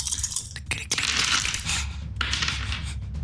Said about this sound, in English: Oh, yeah. Listen to those dice.